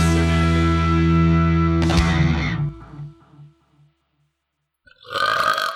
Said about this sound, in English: That's for you. I belch for you, my fine Irish mistress.